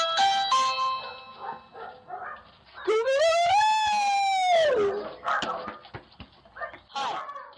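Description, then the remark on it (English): A dog lets out a long, rising and falling howl lasting about two seconds, framed by short yips and whimpers, sounding slightly tinny, recorded by a Ring video doorbell camera. “this dog Shasta. Yeah. He leaves some special instructions. He's away on the road, and he sent me this video from his Ring video doorbell”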